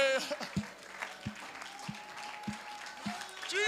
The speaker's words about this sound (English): There's a clap in your hand. Oh, there's a joy in your spirit. Oh, hallelujah. Oh, go ahead. You clap your hands. It's all right.